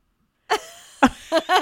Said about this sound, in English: I love the extended … in that as well. … ever been.